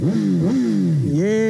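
A motorcycle engine revs loudly at the start of a ride, its pitch dipping and rising through several throttle blips before climbing sharply at the end as it pulls away.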